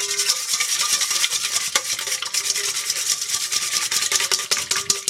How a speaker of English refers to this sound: So it can move real fast, and it beats a lot of air very quickly. The design of the balloon whisk is very efficient at beating air. So it's better. It's a better option than a stiffer whisk.